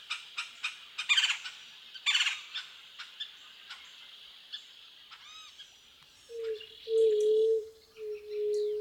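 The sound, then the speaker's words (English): Busy high-pitched bird chirps and calls give way to a few deep, resonant coos of white-tipped doves, drawn-out, in the last few seconds. “Oh my, the low and resonant coos of white-tipped doves.”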